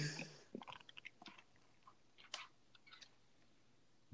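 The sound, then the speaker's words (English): Someone chewing food with a string of short, soft crunchy bites, irregular and quiet, over a low hum with no talking. “I can hear you chopping the whole time and drinking water.”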